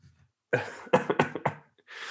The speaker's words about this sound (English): My laugh is making me cough more.